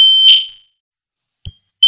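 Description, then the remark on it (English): A piercing high-pitched smoke alarm beeps loudly in repeated bursts, with a brief low thump between tones and no one speaking. “I've got a fire alarm going off in the background.”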